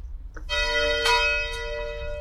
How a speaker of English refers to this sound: You can hear bells